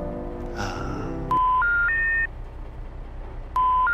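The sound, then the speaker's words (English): At the start of a jingle, a diesel engine turns over with a brief low, chugging rumble, then cuts to three loud electronic tones stepping upward in pitch, followed by a pause and another tone. “There's an engine. There's a diesel engine.”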